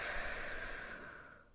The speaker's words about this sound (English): I don't know if you could hear me breathing, and hopefully that didn't create a bunch of static noise, but hey, we are off to a good start. I figured I should probably start today's episode out with some deep breathing, good vibes all around